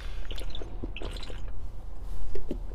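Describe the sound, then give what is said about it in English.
Quiet wet sounds of someone sipping water, with small slurps, drips and swallowing noises over a couple of seconds, no talking. “I'm just taking a sip of water there.”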